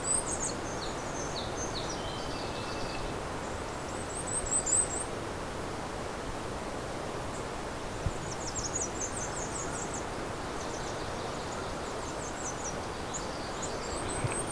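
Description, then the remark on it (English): A very active migrant songbird, eating lots of bugs, gives an alternate song of short, squeaky warbling phrases in scattered faint bursts over a steady hiss of outdoor background noise with no talking. “Just did an alternate song.”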